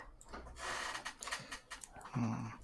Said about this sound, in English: Sorry, I was typing.